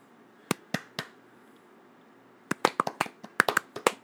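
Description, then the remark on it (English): A small group claps on a count of two, three: three sharp, evenly spaced claps, a pause of about a second and a half, then a ragged flurry of quick claps, fairly loud, with no talking. “Let's clap.”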